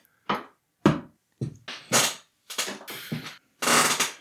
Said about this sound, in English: Squeak, squeak. Yeah, we need some WD-40 up in this motherfucker. Yeah, it's bad.